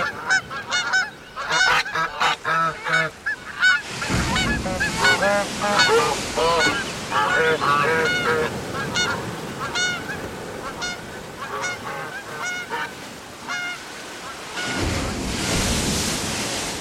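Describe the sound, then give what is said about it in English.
A flock of geese honks repeatedly in loud, overlapping calls, with the rushing wash of surf and wind underneath that swells louder near the end. “I want to play with the geese.”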